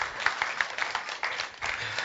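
An audience claps together in a steady, dense patter of applause, its many hands blending into a continuous crackle that swells and dips slightly over about two seconds.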